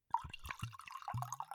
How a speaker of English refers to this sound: Did you hear it? It makes me have to pee a little. Oh, I was pouring myself a second glass of wine.